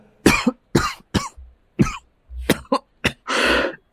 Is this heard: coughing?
yes